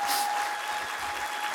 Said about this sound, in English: Like, all y'all people, can we just give them a round of applause that they do this every week?